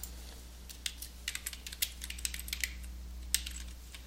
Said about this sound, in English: I'll just start typing in the person's name. It finds it for me.